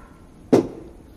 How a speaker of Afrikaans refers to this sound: Wat is dit? Wie staan in 'n hamer teen die kerkmuur die tyd van die oggend?